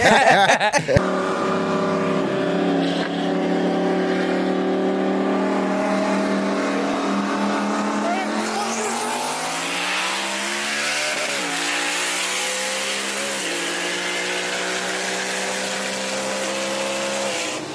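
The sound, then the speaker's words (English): A powerful twin-turbo Mustang engine roars as it accelerates hard, racing on a highway in 2021, its pitch climbing steadily through the gears with a sharp shift partway through. It is loud and sustained, with no voices. “he had a twin turbo Mustang. He ran against me on the highway.”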